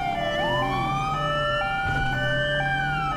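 A police car siren wails loudly as the car responds code 3, its steady tones rising in a slow sweep over a low engine hum, with no voices.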